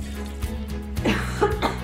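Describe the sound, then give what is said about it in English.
A person blows their nose: two short, breathy, snorting bursts of air over a low background hum, with no talking. “Hold on, let me blow my nose.”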